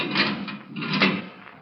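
A heavy steel door grinds open in two scraping pushes, a harsh rasp that swells, dips briefly, then drags on again before fading, with no voices.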